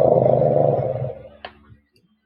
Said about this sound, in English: You hear a growling nearby.